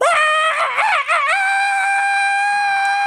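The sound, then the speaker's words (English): A person imitates a dog with one loud, sustained, high-pitched cry, wavering at first and then holding steady like a howl, with no other talk. “Bark, bark, bark, bark, bark, bark. Bark, bark, bark, bark, bark, bark, bark.”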